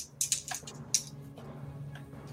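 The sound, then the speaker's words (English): Dice being rolled: a quick cluster of sharp, bright clicks and clatters, then a few softer ticks as they settle, over a low steady hum with no talking. “Do I want to roll or do I want you guys to roll? I'll roll this time.”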